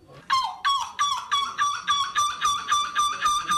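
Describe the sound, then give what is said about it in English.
A person imitates a seagull, letting out a quick series of about nine or ten loud, nasal squawking calls in a steady rhythm, with no other talking. “Is that a person or an actual seagull? That is a human being.”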